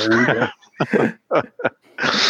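A dog whimpers: a strained, whining cry, then a few short broken yelps with gaps between, and a rough breathy rush at the end.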